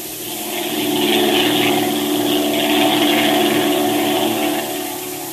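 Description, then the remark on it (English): A propeller airplane engine drones steadily, a sustained harmonic hum that swells slightly in the middle and eases at the end, fairly loud with no voices. “I'm ready to go to the plane now.”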